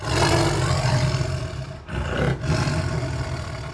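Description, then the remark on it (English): A giant three-headed dog, conjured by a wizard's spell in Wizard World, Hound from Hell, snarls in a deep, rumbling roar, loud and continuous for nearly four seconds, broken by two brief catches for breath before the growling surges on. “It snarls at each of them and then leaps toward Mariah.”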